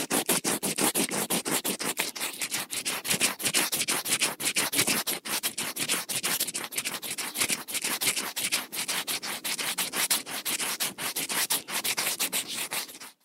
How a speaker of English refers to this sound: The noise you just heard was me rubbing my finger against the back of a wasp nest.